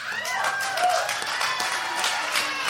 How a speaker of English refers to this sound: Okay, my gentlemen who have received anal sex, go ahead and clap if you enjoy it.